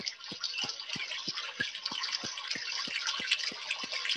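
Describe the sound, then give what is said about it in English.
Steady, hissing flow of running water that stays even throughout, with a quick, regular clicking pulse repeating about three times a second beneath it. No voices. “I hear the water.”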